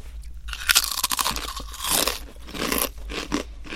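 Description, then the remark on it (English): Someone crunches and chews spicy potato chips, with a rapid, irregular run of sharp, crisp cracks that rise and fall in bursts over a few seconds, without any talking. “The spice level on these chips is so perfect, and the flavor combination is perfect. My favorite part, I think, of the whole thing, the crunch level.”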